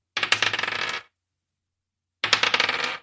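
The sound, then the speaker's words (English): Two separate bursts of bright, rapid clattering as two twenty-sided dice tumble and rattle across a hard surface, each burst lasting under a second with a pause of silence between them. No voices. “Give me 2d20 added together.”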